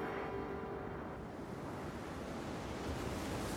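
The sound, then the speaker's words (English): Heavy surf on a stormy ocean churns continuously with gusting wind roaring across the microphone, around a boat in constant danger of capsizing; a dense, rough wash of sound that stays loud and turbulent throughout with no voices present. “Out on the stormy ocean, the James Caird is in constant danger of capsizing.”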